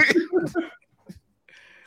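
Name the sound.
sneeze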